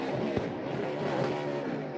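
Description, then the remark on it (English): A race car engine holds at high revs, buzzing and stuttering as it bounces off the rev limiter. It stays loud and steady for the full two seconds, with no voices. “That's a rev limiter.”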